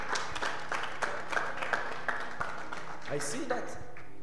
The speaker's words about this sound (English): Let's clap our hands for Jesus. I bless God.